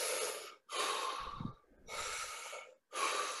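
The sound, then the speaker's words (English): A person demonstrates breath work, breathing deeply and forcefully into the microphone: four loud, airy breaths in a quick steady rhythm with short pauses between, alternating inhales and exhales, and no talking. “So what's so funny is I started breathing like that, and then I was like, oh, let me just like YouTube like what breath work is like.”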